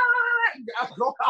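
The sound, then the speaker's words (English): A person's voice imitates cats suddenly fighting with a short, strained, hissing, yowling cry, then breaks into quick, excited speech right afterward. “And all of a sudden, the cats are like, rah!”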